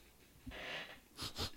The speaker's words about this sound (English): So first we'll look and see the aroma. Go ahead and take a few sniffs of this, put your nose right down in it, and see if you can smell anything there.